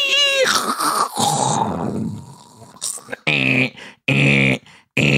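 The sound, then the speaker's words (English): A voice imitates a dial-up modem connecting: high warbling squeals and a hissy, static-like rush, then a rapid run of loud buzzing bursts cut by short gaps. “We based on laws when the internet used to sound like that before you could actually check your emails.”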